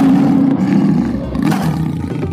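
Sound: roar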